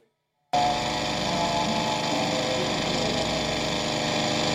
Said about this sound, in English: Thief in the Night, baby. Out there mowing his lawn.